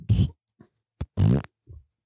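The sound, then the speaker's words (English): A person imitates farting with their mouth: two loud, buzzy, sputtering blasts with a low raspy tone, separated by a few short soft pops and clicks, without any speech. “Do the fart.”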